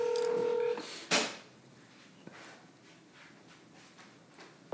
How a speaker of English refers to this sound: Yeah, just hit dial now. You can always hang up and say it was a butt dial.